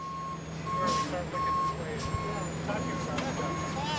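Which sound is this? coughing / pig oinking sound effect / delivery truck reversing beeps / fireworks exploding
delivery truck reversing beeps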